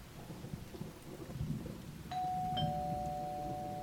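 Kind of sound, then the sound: household object, doorbell ringing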